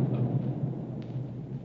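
A deep, rolling explosion rumble, steady and low-pitched, holding at an even moderate level for under two seconds with no voices present; an explosion coming from Galto Island, just off starboard of a ship.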